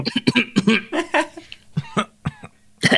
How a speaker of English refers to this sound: Is everyone coughing?